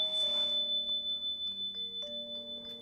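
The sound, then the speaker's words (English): A ritual bell, rung to call the spirits, rings with a sustained, shimmering high tone that hangs throughout, over lower humming tones that shift pitch and pulse gently. No voices are heard. “With the ringing of this bell, we call the spirits here and well.”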